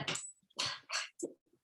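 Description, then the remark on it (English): Dogs stir and grumble in a few short, breathy bursts with brief pauses between them, and no one speaks. “The dogs almost, we almost had an issue.”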